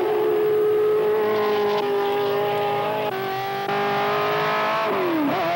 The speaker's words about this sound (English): America's newest challenger in international championship racing. This is it, yeah. The Ford GT.